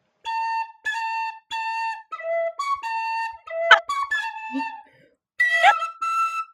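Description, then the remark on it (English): The Star Wars theme played on an Irish whistle: a string of bright, breathy, high-pitched notes, some held and some quick, with a brief pause before a final rising phrase. “Star Wars on an Irish whistle.”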